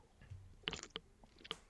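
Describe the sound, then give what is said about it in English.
A quiet sip of IPA beer followed by wet swishing and a few soft clicks as the beer is swirled around in a mouth, with no talking. “A deep sip.”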